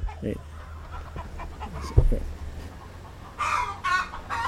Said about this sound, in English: These chickens are having a better time than lots of people because everything that they aspire is here, as far as we can tell.